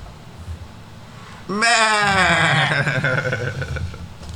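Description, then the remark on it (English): A single loud goat bleat breaks in after a moment of quiet background noise, a long quavering cry that wavers in pitch for about three seconds before trailing off. “And that is coming straight from the goat's mouth.”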